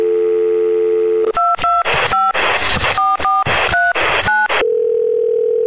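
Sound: telephone keypad dialing tones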